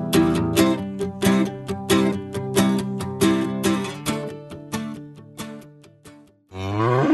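Rhythmic instrumental music plays for several seconds, then stops, and a single loud cow moo rings out at the very end. No one speaks.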